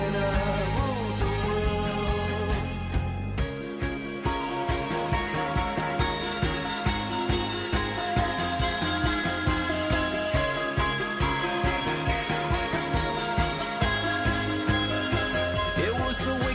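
A pop rock song plays on radio station Big 550 KTRS going into a break, loud and full, with a steady driving drumbeat and layered guitars and keys, briefly thinning out near the start before the band kicks back in, with no talking.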